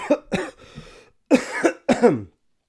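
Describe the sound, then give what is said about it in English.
A loud coughing fit: two sharp coughs, a rough raspy breath, then two longer, heavier bursts of hacking coughs, with no talking. “I think that's like a dramatic part of the podcast where I start coughing.”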